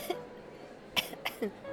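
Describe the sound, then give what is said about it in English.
Several short, sharp coughs from a woman left coughing in a cloud of after-bath splash, coming in an uneven little series with brief pauses between them, no talking around them. “Three prowling gossipers walked past Percy, leaving her to cough in their cloud of ginate after bath splash.”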